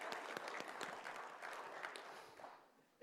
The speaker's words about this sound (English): Go ahead, clap. I clapped too.